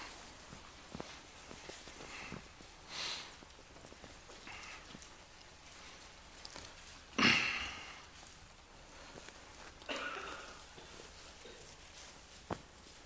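Pages of Bibles turn in a church as the audience looks up Matthew 11: a few soft, papery swishes at irregular intervals, one louder than the rest, with faint rustles and small clicks between them and no talking.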